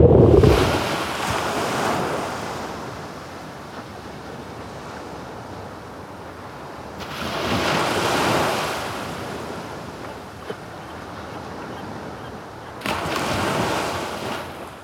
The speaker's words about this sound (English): Intense, constant churning of waves upon land, and you get kind of caught into that, like that rhythm and that slow grind. The grinding away of like water on land. And then you become aware that you're in the city.